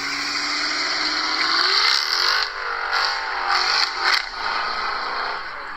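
A Chrysler 300 four-door sedan's engine revs loudly and steadily, its deep note rising and dipping in pitch with a few sharper blips, with no talking over it.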